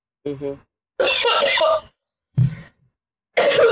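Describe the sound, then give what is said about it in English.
A series of dry, hacking coughs from a cold that cannot be coughed up, in four separate bursts with short pauses, fairly loud; the first sounds voiced, almost like a strained throat-clear, and the others are harsher and breathier. “you know, when you have a cough I wanted to say it like Forrest Gump, a cough due to cold. When you have that and it, you cannot cough it up.”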